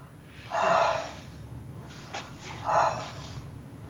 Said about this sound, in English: Great. Keep breathing. Good job. Just keep breathing. Great. Keep breathing. Good job.